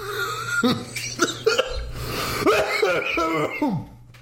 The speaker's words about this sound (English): Heal me of my cough.